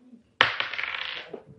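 A small hard object clatters onto a table with a sharp initial impact, then rattles and tumbles briefly before settling, fairly loud: dice being rolled for an attack in a game.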